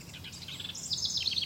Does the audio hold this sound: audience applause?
no